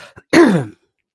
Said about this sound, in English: I haven't coughed one time this morning. I start talking to you and I start coughing.